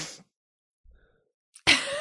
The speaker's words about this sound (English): It just feels uncomfortable and I like everything is tickling and I got to make some kind of gross noise. Hang on. I have to sniff.